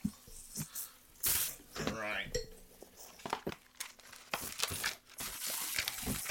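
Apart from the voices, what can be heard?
unwrapping a gift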